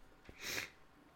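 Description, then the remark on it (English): A single quick nasal sniffle from someone with the sniffles, a short breathy hiss lasting about a quarter second, fairly quiet, with no talking around it. “I got the sniffles this morning.”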